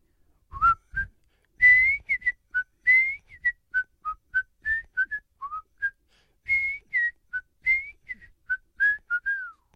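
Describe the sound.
A person whistles a jaunty TV show theme-tune melody alone, a clear string of short and held notes with brief pauses, rising and falling in a bouncy rhythm.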